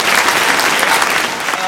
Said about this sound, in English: But our biggest thanks goes to you, the audience, coming along, asking your questions, supporting, and of course to our panellists. A round of applause for all of them.